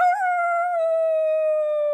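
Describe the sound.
A person gives a loud, sustained wolf-like howl, holding one steady high note for about two seconds after a brief wavering rise at the start, with no talking.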